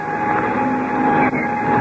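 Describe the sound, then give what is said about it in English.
An airplane engine, started with the starter from the front cockpit, roars at a steady, loud, even pitch, a dense continuous drone with no voices over it and only a brief dip near the end. “Well, I'll jump into the front cockpit and get the engine started.”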